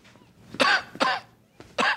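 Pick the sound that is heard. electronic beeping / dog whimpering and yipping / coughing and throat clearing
coughing and throat clearing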